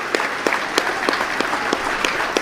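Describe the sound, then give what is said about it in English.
Dense applause from several hundred people at a meeting of the Save Navan Hospital campaign, for the group's chairperson, Padraig Tobin: a steady wash of clapping with a few sharper claps standing out at a fairly regular pace, holding an even loudness throughout. “A round of applause from several hundred people attending a meeting of the Save Navan Hospital campaign for the chairperson of that group, Padraig Tobin.”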